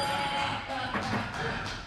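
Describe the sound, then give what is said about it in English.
A small bell rings with a bright, sustained metallic tone that lingers over a steady background of noise, fading only slightly across the couple of seconds. “I forgot about my bell.”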